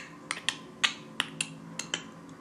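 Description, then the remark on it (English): About eight crisp, sharp hand clap samples added to a beat, striking in a quick, slightly uneven pattern, each bright and snappy with a short tail, over a faint, steady low background hum. “I'm going to add a hand clap right there.”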